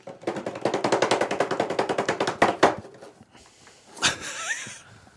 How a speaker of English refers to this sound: Wait a minute. Don't do it yet. Drum roll. Drum roll. Hold on.